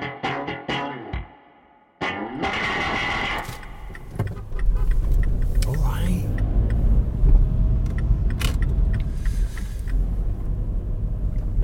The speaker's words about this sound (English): Okay, I'm just going to get parked. I don't know what the rules are on making a podcast and driving a car. Probably, you know, don't. So I'll pull over and then carry on.